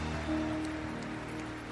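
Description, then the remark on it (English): Steady rain pours down in a dense, continuous patter, drops drumming on a surface with a low hum running beneath, on a Sunday morning. No one speaks. “Wow, the Lord is blessing us with showers of rain.”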